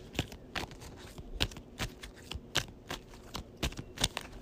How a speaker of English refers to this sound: But I got to shuffle. I only had two cards in my discard pile for the encounter deck. So let's give that a quick shuffle.